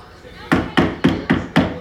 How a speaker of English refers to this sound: Let me get up and knock on wood because that's just too much truth. Knock on wood.